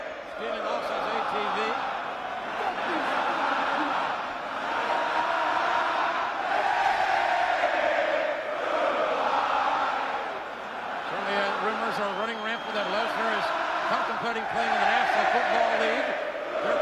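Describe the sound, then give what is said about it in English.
A large arena crowd at WrestleMania 20 in 2004 roars continuously in a loud, dense wash of voices, with rising and falling jeers and shouted chants swelling throughout the match, sounding hostile toward the two wrestlers in the ring. “This pummels into that really horrid WrestleMania match because everybody knew that they were both leaving and the crowd just took a giant shit on them the entire match.”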